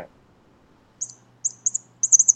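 A cat toy, a little dinosaur with a feather bought at Walmart, held up to a phone, chirps like a small bird: a single high tweet, then quick clusters of two and three bright chirps, fairly loud, over a faint low hum with no talking.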